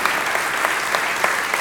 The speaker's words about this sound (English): No, let him clap.